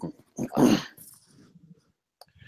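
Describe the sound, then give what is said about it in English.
A dog lets out a short whining yelp, followed by low rumbling growls and a faint whimper, with a brief click near the end. “Shoot, I gotta check on my dogs real quick.”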